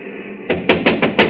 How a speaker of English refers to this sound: First of all, we'll try rapping on the door.